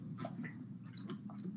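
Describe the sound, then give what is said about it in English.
Someone takes a sip of water: soft, wet mouth sounds and a few small swallowing clicks over a low steady hum, quiet throughout with no talking. “Get a drink of water.”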